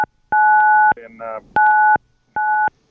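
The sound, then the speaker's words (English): Loud electronic smartphone keypad beeps, three steady dual-tone presses of uneven length, with a brief burst of garbled noise between the first and second, clear; a phone-in caller pressing the phone to his cheek and hitting buttons. “Yeah, I think he's pressing the phone to his cheek.”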